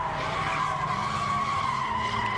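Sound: car tires skidding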